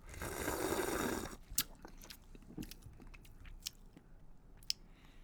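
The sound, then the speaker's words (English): A loud, airy slurp of a hoppy, grapefruit-scented beer lasting about a second, then quieter gulping swallows and scattered wet mouth clicks, with no talking. “Here we go. Big sip.”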